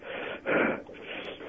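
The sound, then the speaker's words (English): Heavy breathing of a man heard down a phone line, a muffled rush of air that swells loudly for one breath before settling into a softer, steady hiss. “Why are you breathing all heavy?”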